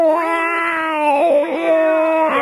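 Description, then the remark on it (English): A person imitates a tomcat's caterwaul, holding one loud, drawn-out wailing note for a couple of seconds. The pitch wobbles and bends midway, then swells again at the end. “That's a horny noise, isn't it? That yeah, cat wants my velvet. That cat wants your velvet. That's called a caterwauling.”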